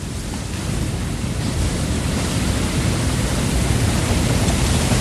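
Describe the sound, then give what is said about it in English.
Heavy surf roars continuously against a rocky shore, a dense, unbroken wash of crashing water, loud and steady with no voices. “Beware, heedless one, the witch of the water, the ogress of the unfathomed abyss, as her wild waves lash the rocks, she watches from the deep.”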